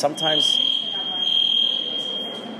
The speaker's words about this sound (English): what is that? Some alarm, I think.